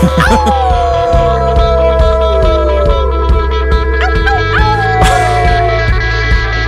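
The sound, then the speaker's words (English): A singer lets out a long, sliding howl over a full rock band with a steady beat, then a second, shorter howl rises out of the music a few seconds later. “Ooh, there's someone howling.”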